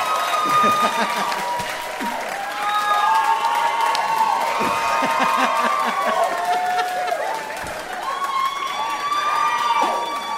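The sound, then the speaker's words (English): A crowd applauds and cheers as Gary Richardson and Zack Fox are introduced, with loud whoops and cheers rising over dense, continuous clapping that holds for the full ten seconds, shrill voices riding on top. “Give it up for Gary Richardson and Zack Fox!”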